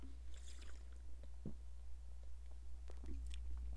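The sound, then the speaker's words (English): A quiet sip of Blue Moon Light Sky beer: soft wet slurping and squishy mouth sounds with a couple of small clicks and swallows over a low steady hum, with no talking. “Let's get a little sip of this Blue Moon Light Sky.”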